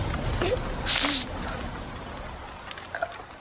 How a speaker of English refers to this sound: You are on your back. You are looking up into driving rain.